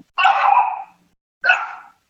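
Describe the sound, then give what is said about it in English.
A puppy barks twice, each a drawn-out, high-pitched yap with a short pause in between, loud with no other sounds around it. “There's that little puppy again. Fucker doesn't know how to control his barking.”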